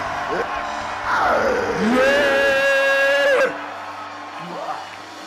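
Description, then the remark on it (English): A church audience shouts and yells together during a prayer service, with one loud, sustained high cry ringing over the din before it cuts off abruptly, leaving a quieter murmur of voices. “Your shouting is scattering the spirit of poverty.”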